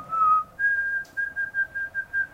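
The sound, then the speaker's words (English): A person whistles a short imitation of a yard songbird's song, a bird with a bright white patch under its chin, white and dark forehead stripes and yellow by its bill: a brief lower note, then a higher held tone broken into several quick pulsing chirps, clear and steady in pitch with no talking. “You can see him around the yard, and he has a beautiful little song that's it's on our clock, by the way.”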